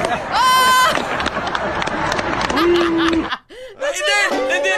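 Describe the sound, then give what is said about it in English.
A loud graduation audience erupts in booing and jeering at the valedictorian during his speech, with sustained groaning voices, whistles and shouts overlapping, then a brief dip before the booing swells again. “In his own graduation speech where he's the valedictorian, then all of a sudden the audience turns on him and starts booing.”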